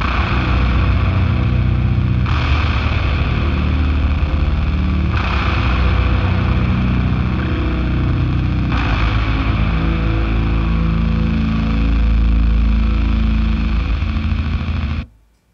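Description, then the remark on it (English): Loud, distorted guitar played through the Carnegie Hall reverb setting on an H9 effect pedal, a huge hall reverb, fresh chords struck every few seconds and blooming into a thick, continuous wash before cutting off abruptly. No one speaks. “And then, you know, pairing it with, this is just the Carnegie Hall reverb on the H9. You can just hear it kind of pull.”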